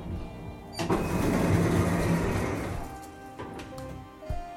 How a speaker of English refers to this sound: Doors opening.